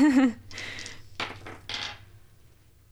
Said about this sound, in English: Roll both dice again, please.